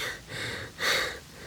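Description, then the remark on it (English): Heavy, rapid panting of a woman, covered in a deer's blood, from the effort of hitting the deer on the head with a rock: four quick breaths in a steady rhythm, each a breathy rush of air with one louder exhale near the middle, with no talking. “She's covered in the deer's blood and panting from the effort.”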